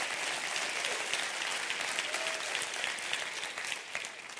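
An audience claps their hands for the word of the Lord in a dense, steady burst of applause lasting several seconds, loud and continuous with no voices rising above it.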